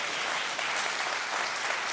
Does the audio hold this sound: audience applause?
yes